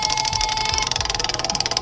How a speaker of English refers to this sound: Ready to spin the wheel? Spin it!